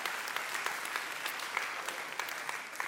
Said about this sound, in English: I thought they'd clap for you